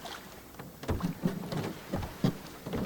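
A small boat rocks on the water, with soft lapping and irregular knocks and creaks against the hull, plus a faint breezy hiss. Moderately quiet, with no voices.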